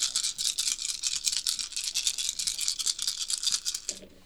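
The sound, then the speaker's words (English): Several dice, including red and blue ones, rattle and clatter in a fast, continuous stream of bright clicks for about four seconds as they are rolled, then stop abruptly with a soft low knock. No one speaks. “I rolled no successes.”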